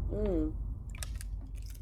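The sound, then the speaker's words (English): A short hummed vocal sound gives way to someone taking a quick sip, with soft wet mouth clicks and a gulp. “I got to take a sip on that one.”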